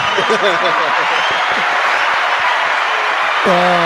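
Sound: audience round of applause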